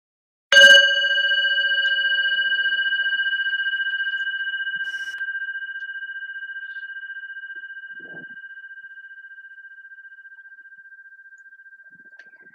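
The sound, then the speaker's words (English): A single strike of a meditation bell, rung to begin a sitting meditation, rings out alone: a clear, steady tone with shimmering overtones that slowly fades over more than ten seconds. “I will ring the bell to start, and I will ring the bell to signal that we are complete.”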